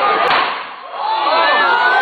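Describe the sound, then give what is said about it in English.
A single sharp gunshot, fired by a police officer and heard on a video recording, cracks out early, then a crowd of voices fills the rest, with people shouting and crying out loudly over a dense, continuous murmur. “And you hear the shot so clearly.”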